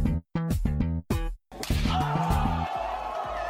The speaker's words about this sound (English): once again, for making that sweet Does It Slap intro.